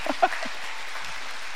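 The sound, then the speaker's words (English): A crowd claps steadily for the Lord, a dense, even wash of applause, with a brief voice calling out over it at the very start. “Yes, we should clap right now for the Lord.”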